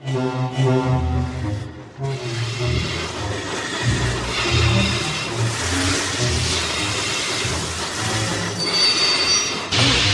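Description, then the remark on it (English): A large bus rolls in on a cold, wet evening with loud, drawn-out screeching brakes, a shrill metallic squeal riding over a heavy rumbling engine for about ten seconds, continuous, with no voices. “And he stops to get a robe because it's cold and it's wet, and he accidentally lights the wand, and the night bus appears.”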